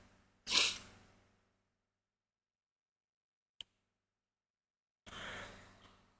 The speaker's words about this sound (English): Can you tell I'm, like, fighting a sneeze?